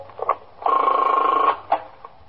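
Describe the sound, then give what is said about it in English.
A telephone at the First Precinct police station rings once, a buzzy, steady electronic trill lasting about a second, framed by a few short clicks and blips before and after. No voices are heard. “A lieutenant from the Manhattan West Homicide Squad is ringing in for some information about an armed robbery we had in the 21st last week.”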